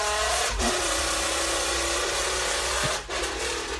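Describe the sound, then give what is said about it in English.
A steady, gritty buzzing drone made with empty soda cans that mimics a motorcycle engine, running continuously for a few seconds with a couple of brief dips, no talking. “He realized he can make a motorcycle sound with soda cans, empty soda cans.”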